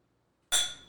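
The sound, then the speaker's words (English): A single bright, sharp clink of glasses touching in a toast, with a ringing tone that fades over a moment after near silence. “That was a slow cheers.”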